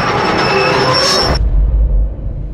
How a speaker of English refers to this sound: He hears the steam whistle of the express and the desperate screeching of brakes.